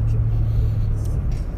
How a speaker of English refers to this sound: I'm trying to navigate. I'm trying to talk while I'm trying to navigate through traffic, you know what I'm saying?